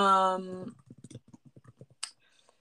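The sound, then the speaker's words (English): A voice briefly trails off, then a quick run of about a dozen light keyboard key taps follows in an uneven rhythm as someone types to do some research, ending with a sharper click. “We have to do some research here. Typing.”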